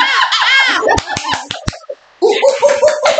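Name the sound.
hand clapping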